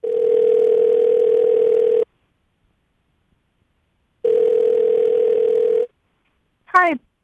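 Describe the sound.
A steady electronic telephone tone sounds twice, each lasting about two seconds with a long silent gap between, as a phone call is placed to give someone good news, followed by a brief voice answering at the end.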